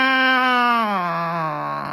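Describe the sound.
A human voice imitates a cat's meow in one long, tonal, whiny note that starts higher and slides gradually downward over two seconds, steady and fairly loud.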